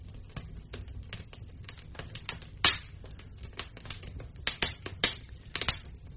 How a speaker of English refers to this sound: Let me get a sip of my tea.